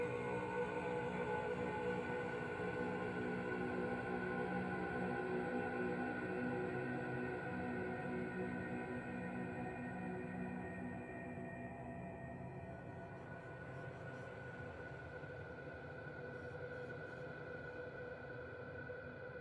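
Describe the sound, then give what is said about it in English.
A storm rages overhead in a steady, unbroken roar, deep rumbling layered with sustained droning tones, holding at a constant loudness for the whole stretch with no voices. “As you all hear the storm raging overhead”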